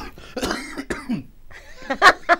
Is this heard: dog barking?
no